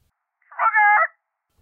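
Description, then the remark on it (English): A person imitates a chicken with a single high, nasal squawk that lasts about half a second. It is fairly loud and stands alone, with silence before and after. “And then also he's offended that I'm impersonating a chicken.”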